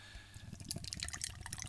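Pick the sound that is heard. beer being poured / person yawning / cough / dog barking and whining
beer being poured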